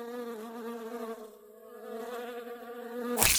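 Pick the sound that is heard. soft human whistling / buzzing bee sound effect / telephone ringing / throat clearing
buzzing bee sound effect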